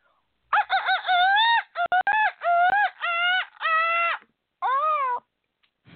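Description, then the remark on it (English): A person imitates a seagull with a series of loud, nasal, wavering squawks in quick bursts, about six calls with short gaps between them. “I do an excellent seagull. I didn't do it right. Here, let me try again.”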